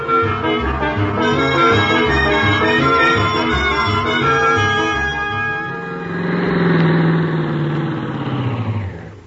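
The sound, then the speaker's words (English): A car engine cranks with a steady, rhythmic chugging, then catches and revs up, settling into a loud running hum as the car is started to drive off to Clay City. No one speaks. “Start the car, Miss Brooks.”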